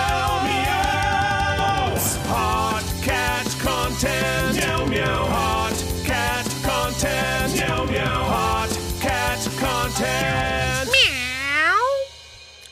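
A dense, continuous stream of loud cat meows, many overlapping in quick succession over a low steady backdrop, ending with one long, drawn-out meow. No one speaks.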